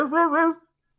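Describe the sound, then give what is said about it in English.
A person voices a single drawn-out imitation of a dog's bark in a 'Casio dog' voice, a tonal two-part yelp lasting about half a second, followed by silence. “Do it in Casio dog voice or nothing?”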